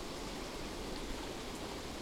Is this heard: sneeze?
no